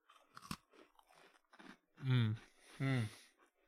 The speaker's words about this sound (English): So this is a Maryland cookie. And I'm expecting this is going to do a proper crunch.